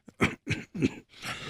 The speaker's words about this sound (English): I think everyone is coughing in this again